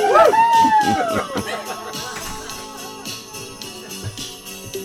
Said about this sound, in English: This is where you cheer. A little more enthusiasm, book people.